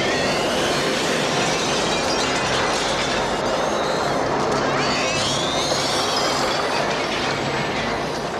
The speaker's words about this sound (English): The image and sounds of a burning, screaming skeleton have never set well with me.